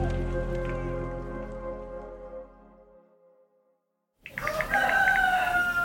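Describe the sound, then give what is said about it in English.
A lingering, fading musical tone dies into brief silence, then a rooster crows loudly, its strained call rising and wavering over a steady hiss like rain. “Oh, I hear a rooster.”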